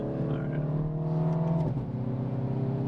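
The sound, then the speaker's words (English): A car engine pulls hard under acceleration while overtaking two slow-moving trucks on an otherwise empty road, a loud, steady droning hum heard from inside, then its pitch drops abruptly partway through as if shifting gears before continuing to rumble. “Gonna double up here. Feel that? We just passed two very slow moving trucks.”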